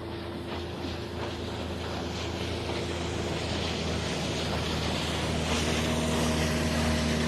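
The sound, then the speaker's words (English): A speedboat motor drones steadily as the boat rides up and down a river, a continuous engine hum with a rushing wash of spray and wind, holding fairly loud. “And then these goobers start riding their speedboat up and down the river.”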